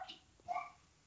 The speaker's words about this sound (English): And as I hear dogs in the background to reinforce that we're talking about Lady and the Tramp. That's my little dog, Wendy, yes.